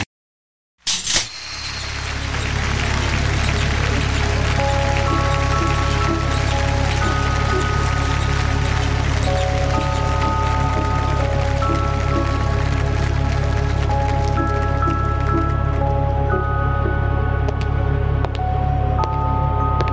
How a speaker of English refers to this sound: river.